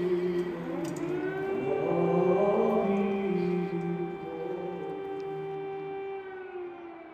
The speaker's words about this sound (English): funeral for three fallen Ukrainian soldiers in Lviv. And while they're mourning, while they're going through this funeral service, the air raid sirens start up, but no one moves and no one budges.